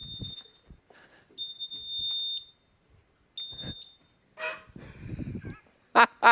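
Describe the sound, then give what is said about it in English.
A fire alarm goes off with no fire, sounding in sharp, piercing high-pitched beeps, repeating in bursts with short gaps, followed by some shuffling and a few loud, honk-like squawks near the end. “I don't know if you heard that, but the alarm goes off at least once, and I kind of figured it was gonna happen.”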